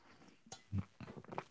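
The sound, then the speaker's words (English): A brief sip of coffee: soft slurping and mouth noises, a low gulp in the middle, then a few small wet clicks, quiet and with no talking. “Hold on, sip of coffee.”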